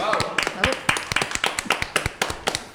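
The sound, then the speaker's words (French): An audience applauding a men's hairdresser, with dense, rapid claps forming a steady, moderately loud patter throughout, broken by a few sharper individual claps. “On peut l'applaudir, je pense.”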